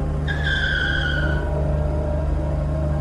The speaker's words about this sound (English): Mark weaved through more car accidents. One car driving beside us clipped us.